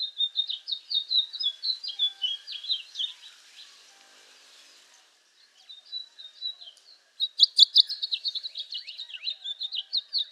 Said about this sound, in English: And right now we're hearing house finches already singing. And those are the birds with the red head and streaky brown. Beautiful, sweet song.